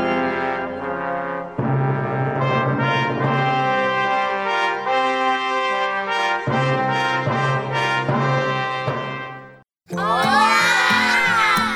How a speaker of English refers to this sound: These are the voices of young Lutherans in Mexico City, children who are excited to learn more about their Savior, Jesus.